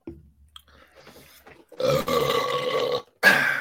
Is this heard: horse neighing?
no